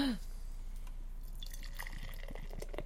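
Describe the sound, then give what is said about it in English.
Beer from Peak Organic Brewing of Portland, Maine, is poured into a glass with a steady, bubbly splashing and trickling, fairly quiet, with small drips and fizzy crackles throughout. “And the pour.”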